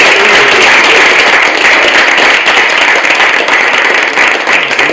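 Loud, steady applause from a crowd of many hands, clapping for a music group, a dense continuous patter of claps filling the whole stretch without pause, evenly sustained.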